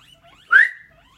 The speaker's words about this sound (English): Sorry, my guinea pigs are squeaking. Stop!